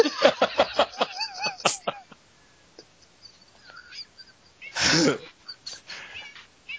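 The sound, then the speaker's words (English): A cat makes a quick run of short, fairly loud cries in the first couple of seconds, followed by quiet and then a sudden harsh, noisy burst. “the cat is taking over the podcast.”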